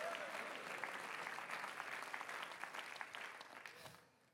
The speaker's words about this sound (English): Oh, clap your hands unto the Lord.